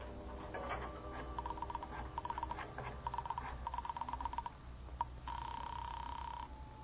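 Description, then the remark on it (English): A telephone in a hall is dialed in short bursts of rapid clicks, several groups in a row, followed by a steady electronic tone on the line. Fairly clear over a faint background hum. “I got up, went to the phone I'd seen in the hall.”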